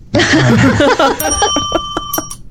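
A loud bell sound effect rings with a sustained bright metallic tone, preceded by a brief warbling burst and accompanied by several quick clicking strikes as the ring fades.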